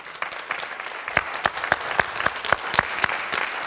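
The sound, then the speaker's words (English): A church audience applauds to thank its children's ministry leader, with steady, overlapping claps and a few sharp, louder claps standing out at a regular rhythm over the dense patter of hands. No one speaks. “She's all the way in the back serving our kids right now, so hopefully she heard us clapping for her.”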